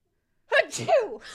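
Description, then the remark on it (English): A single sharp sneeze bursts out after a moment of silence, with a breathy intake and a loud, explosive release. “Opening the can, sneezing.”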